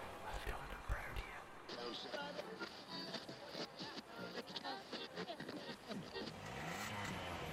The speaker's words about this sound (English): Jesus Christ, what's with all that? Of course, an old biddy driving a fucking shit truck. Don't park there. Don't park there. Come, for fuck's sake. You had the entire car park, and you park right beside me.